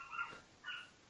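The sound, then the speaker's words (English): A dog, excited about pizza, gives two quick, high-pitched excited barks, almost yips, separated by a brief pause, fairly quiet, with no voices around them. “Does your dog care to weigh in?”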